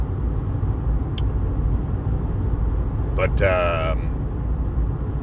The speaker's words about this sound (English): But, traffic, man. It's enough to break your train of thought sometimes. People do such weird stuff.